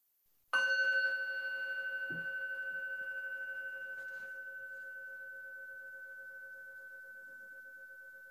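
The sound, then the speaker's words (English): A single meditation bell is struck once during a guided breathing meditation, ringing out with a clear, pure tone and steady overtones that linger and fade very slowly over several seconds. “Listening to the echo of the sound of the bell, feeling the air coming in and out of the body, we focus on the breath within a wide open awareness.”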